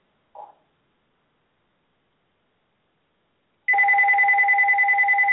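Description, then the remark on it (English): After a faint tap and a few seconds of silence, the speaker's mobile phone starts ringing: a loud electronic tone with a rapid warbling pulse that keeps going to the end, with no one talking. “I don't know how to turn the thing off. My phone just hanging up.”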